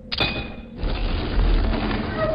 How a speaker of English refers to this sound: Whoa, the whole wall is opening up. I think you just found the front door